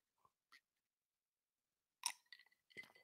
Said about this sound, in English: One more sip.